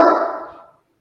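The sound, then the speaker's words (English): A single dog bark, loud at first and then trailing off over most of a second into silence, with no talking over it. “So is Dave's dog.”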